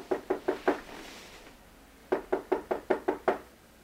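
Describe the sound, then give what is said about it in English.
Knocking on a door: a quick burst of four raps, a short pause, then a second, longer run of about seven firm knocks, clear with nothing else in the background. “It is a pleasant dream, which is quickly interrupted by a knock.”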